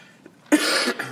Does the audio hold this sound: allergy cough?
yes